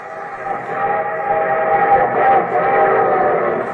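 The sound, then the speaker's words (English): A train sound effect for the NBC radio program The Railroad Hour, presented by the Association of American Railroads: a loud, sustained multi-tone whistle blast holding steady for several seconds with a slight swell in the middle, no voices present. “And from Hollywood, here comes the star-studded show train.”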